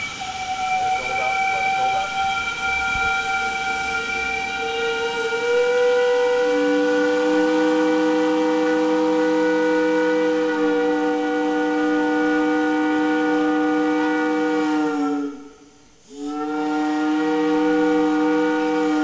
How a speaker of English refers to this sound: And how in cities and towns across the country, you could set your watch by the 5 o'clock whistle. One. Now pull down all the way. Let it build up the pressure.